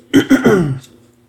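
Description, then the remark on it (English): A man clears his throat while reading Bible verses aloud, with a few quick, rough bursts that trail into a low, gravelly rasp, fairly loud, with no speech. “Pardon me. Got a frog in my throat this morning.”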